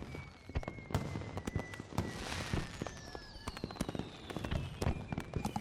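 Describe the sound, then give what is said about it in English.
Distant fireworks from Disney World boom and crackle in an irregular series of sharp bursts, with faint whistling streaks rising between them against a steady outdoor background hum. “Side note, the fireworks from Disney World are going off right now.”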